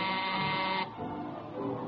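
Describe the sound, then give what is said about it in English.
The door buzzer of a Park Avenue apartment is pressed, sounding in one steady, harsh electric drone for nearly a second, then cutting off, leaving a softer rumble behind. “You get to his Park Avenue address, stick your finger on the buzzer.”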